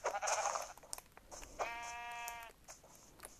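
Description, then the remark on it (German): Two sheep bleats from a video game as a sheep is being killed: a short, noisy bleat at the start, then a longer, steady, nasal bleat with clear stacked harmonics lasting about a second, moderately loud. “Schaf töten.”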